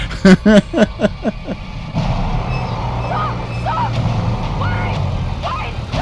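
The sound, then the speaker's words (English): A brief voice at the start gives way to a loud, steady low rumble of a truck engine as a truck drives past, continuing to the end with faint higher chirps over it. “A truck just happened by.”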